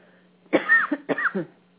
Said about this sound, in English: she begins to cough. Yes, it's true.